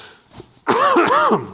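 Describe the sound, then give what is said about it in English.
A loud cough that rolls into a harsh, voiced throat clearing, lasting under a second after a brief quiet breath, with no talking around it. “I apologize for all the coughing.”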